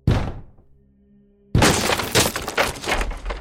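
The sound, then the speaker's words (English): A wooden door is broken down by several people: one heavy blow with a ringing, fading resonance, then a loud crash of splintering and breaking that rumbles on to the end. “We've crashed it.”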